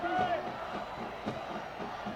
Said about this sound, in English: This Riverdale crowd has gone nuts. Student section across the way. Jumping in the air. You can probably hear them on our crowd mic.